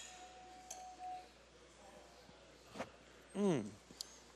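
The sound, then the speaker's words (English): Wine glasses of Sauvignon Blanc clink together once in a toast, leaving a thin ringing tone that fades within a moment, followed by quiet handling noises and a short murmured vocal sound. “I'm going to take a sip of it right now. Let me say cheers.”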